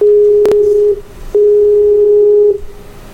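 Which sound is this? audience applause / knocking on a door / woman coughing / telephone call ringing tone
telephone call ringing tone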